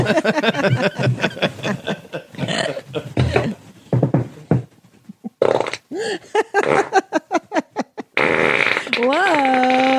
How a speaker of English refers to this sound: You farted. Oh my gosh. Oh my gosh.